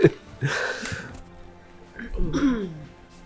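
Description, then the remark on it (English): Two short, throaty burps, separated by a brief quiet gap, with some breathy noise around them. “I'm burping.”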